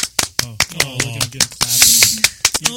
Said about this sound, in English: That's real clapping too. Not even fake synthesized iPad clapping?